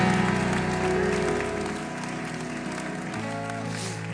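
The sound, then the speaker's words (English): An audience in the house of the Lord claps their hands unto Jesus Christ in a dense, steady wash of applause over sustained musical tones, the clapping thinning and softening after the first couple of seconds. “Clap your hands one more time unto Jesus Christ.”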